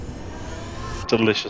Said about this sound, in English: You heard the ice cream truck. It's like that bit in Shaun of the Dead.